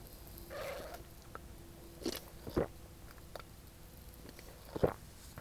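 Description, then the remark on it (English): Quiet sips of coffee: a soft slurp early on, then a few short wet gulps and mouth clicks spaced out over several seconds, with no talking. “I'm going to be sipping coffee right now.”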